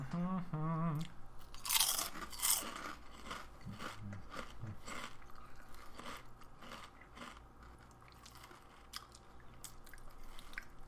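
Crunching on potato chips: loud, irregular crisp crunches and bites, with a brief rising vocal squeak at the start, settling into continuous quieter chewing crackles.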